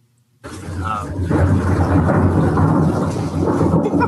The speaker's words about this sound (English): That's real thunder, folks. That is not a special effect.